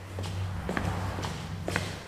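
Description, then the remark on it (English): Flip-flops slap against the soles of a person's feet as they walk at an even pace to a cubicle, about four steps in two seconds, over a steady low hum. “Flip-flops hitting the soles of feet before the cubicle door next to me opened and closed.”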